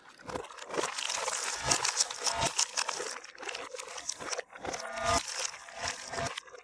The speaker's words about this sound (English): taking that recording of him eating in reverse at two different points in the recording. And then I'm going to pan each of them to either side